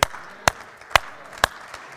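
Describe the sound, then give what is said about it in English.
An audience claps together in a steady rhythm, four sharp, crisp claps about half a second apart with a fainter fifth at the end. No one speaks over them. “Somebody clap with me, for you are with me.”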